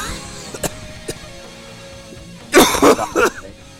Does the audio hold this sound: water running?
no